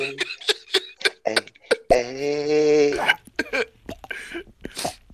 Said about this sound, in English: What was that? What was that? I think somebody was burping or something.